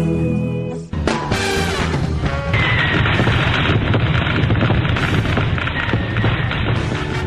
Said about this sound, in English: Nice, we had fireworks.